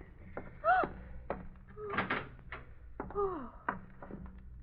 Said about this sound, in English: Open the room door